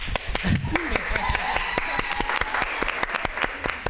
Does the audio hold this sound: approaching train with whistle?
no